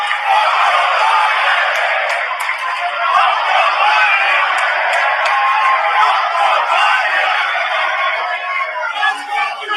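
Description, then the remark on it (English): A large crowd at a convention roars continuously, with many voices cheering and yelling together in a dense, loud wash of sound that holds steady for the whole stretch. “Well, let me play you some video from the crowd.”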